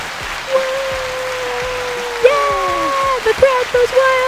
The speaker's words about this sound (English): So we have these fancy mics now, and we think we're really cool up in the world with these really cool little sound effects. So let's give everybody a round of applause, everybody.